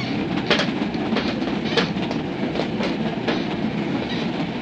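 A passenger train rolls steadily along the rails, a constant broad rumble broken by irregular clacking wheel beats. No voices are heard.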